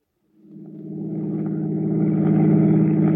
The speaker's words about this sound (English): drove toward the George Washington toll bridge, across the Hudson River in Siegel's car, with the third criminal, Bud Aldridge, following in their own car. Within a few minutes, they were on the approaches to the bridge and nearing the toll gate.